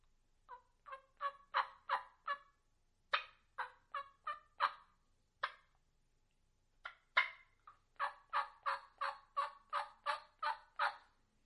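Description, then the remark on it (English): A mouth call imitates a turkey hen with soft yelps in short broken series, a little louder than a tree yelp, sharp single clucks scattered between them, then a steady run of about ten even yelps to finish. No talking. “You're breaking them up, the small yelps, a small series of yelps with clucks.”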